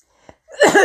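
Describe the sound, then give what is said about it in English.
A brief catch of breath, then a sudden, harsh cough bursts out, loud and rough, with no talking around it. “Coughing death here.”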